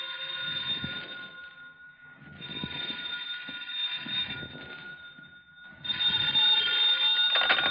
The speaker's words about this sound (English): Then the phone rang.